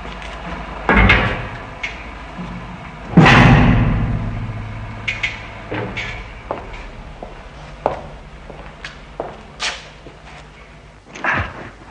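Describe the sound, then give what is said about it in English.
A heavy 6-inch steel blast door to a blast escape room 40 feet below the base of a rocket swings shut with a loud, resonant boom, followed by scattered metallic clanks and knocks as latches and bolts are worked, with no voices. “They find themselves in a totally rubber room, walls and floors, and they head for safety through a 6-inch steel door.”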